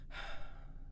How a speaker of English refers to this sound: That's a perfect sip of a cup of coffee in a movie. I'm ADRing right now.